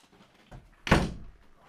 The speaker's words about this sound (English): Hold on. My kids don't know how to close doors. One sec.